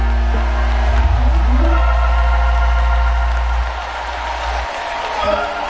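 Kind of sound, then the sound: crowd, audience clapping and shouting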